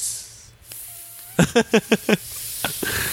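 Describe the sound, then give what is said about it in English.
A person imitates a snake's hiss with a breathy, sustained hissing sound, followed by a quick run of five short, evenly spaced voiced bursts. “You want to hear the sound of a gay snake?”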